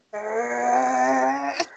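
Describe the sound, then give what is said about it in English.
A dog growls in one steady, continuous, clear rumble lasting over a second, ending with a brief sharp click. “My dog is growling.”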